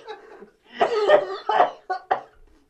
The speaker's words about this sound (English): I can't breathe. I'm so sorry. That was what we call a coughing fit.